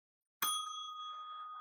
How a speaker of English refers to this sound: I have purchased a bell, and the podcast continues to make us lose money. I used a gift card on this.